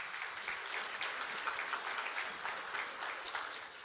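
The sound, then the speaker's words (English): A crowd applauds steadily for about four seconds, a dense, even wash of clapping hands with no voices rising above it and no pauses. “I think that's worthy of applause, not because I said it, but because David said it.”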